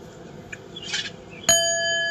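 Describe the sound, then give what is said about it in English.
A single bright bell strike rings out sharply and keeps sustaining with a clear metallic tone, heard alone after a moment of soft background noise. “I ain't like that bell.”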